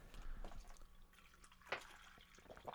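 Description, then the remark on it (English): Smartwater pours from a bottle in quiet, uneven glugs and splashes, with a couple of brighter drips standing out near the end. It is fairly soft, with no talking. “give me a bit of hit of that smart water, would you? Coming right up.”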